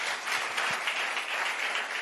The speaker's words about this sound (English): Beautiful. Clap your hands.